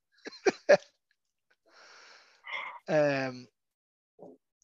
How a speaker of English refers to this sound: Sip of beer for the working man.